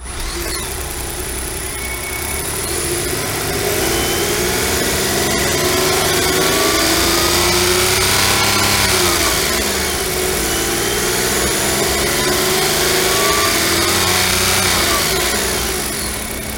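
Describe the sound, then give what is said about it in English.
A Nissan Note e-Power's small engine runs loudly, its hum climbing as it revs, dropping back briefly, then rising again in a long sustained rev, with no voices. The car is stationary with the throttle held flat, the engine charging the battery. “So let's start it up and you can have a bit of a listen to it. I'll give it a bit of a rev.”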